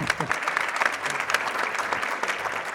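A crowd applauds steadily, a dense wash of many hands clapping at once, fairly loud and sustained without pause for the whole stretch.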